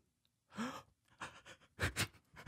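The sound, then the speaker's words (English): A person voices a series of sharp, breathy sobbing gasps, mimicking someone crying: a long shaky intake, then several quick hitching breaths, fairly loud with no words. “Like cry like that, like that cry, you know?”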